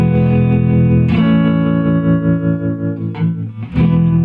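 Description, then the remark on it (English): A Stratocaster electric guitar plays three sustained, shimmering chords with built-in vibrato and reverb, strummed fairly loud, each chord ringing out before the next, with no voices. “It's just built-in vibrato and the some reverb, Stratocaster, three chords.”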